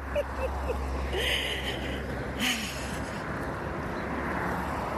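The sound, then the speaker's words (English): A steady low rumble of heavy road traffic with a couple of vehicles swelling louder as they pass by, no voices present. “Please bear with me as suddenly we have tons of traffic going on here.”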